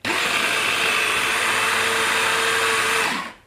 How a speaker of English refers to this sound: Okay, so in with a teaspoon of my almond extract next. And now I'm going to just blitz this up. So we don't need to pulse it the same way as we did earlier because we're just bringing this together as a paste.